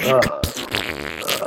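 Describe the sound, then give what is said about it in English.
A person blows a wet, sputtering raspberry with their mouth, imitating a fart in one short buzzy burst that fades into breathy voiced sound, fairly loud. “It just front farts it out.”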